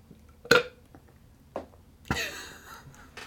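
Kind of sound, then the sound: human body sound, burp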